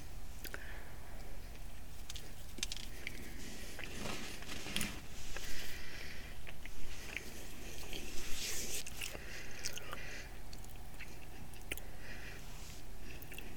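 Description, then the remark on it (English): Moist chewing of blueberries with soft squishy bites and small wet clicks, steady and unhurried over a faint background hiss, with a few slightly louder bursts midway. “I love the flavor of blueberries. It's just so good.”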